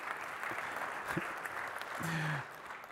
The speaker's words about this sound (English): Yeah, you can go ahead and clap. Thanks.